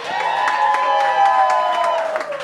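A crowd applauds and cheers loudly and steadily, with dense clapping and overlapping whoops and shouts held throughout the two and a half seconds.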